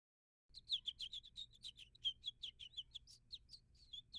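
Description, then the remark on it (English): In the morning, birds chirp busily in rapid, overlapping tweets, a steady string of high bright calls starting after a brief silence, with a faint low hum underneath. “Every morning, Skippyjon Jones woke up with the birds.”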